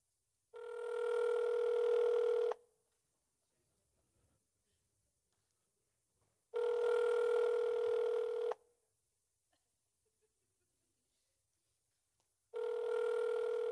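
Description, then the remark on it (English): A phone ringback tone from a call placed on an Apple phone, heard over speakerphone: three steady two-second rings with long silent gaps between them, slightly thin and tinny, with no talking. “Let's see if it rings. Oh, let me put it on speaker.”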